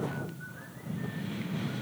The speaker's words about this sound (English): Oh, somebody's whistling.